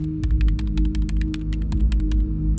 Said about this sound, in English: What was that? It was just the door locking. Why did you lock the door?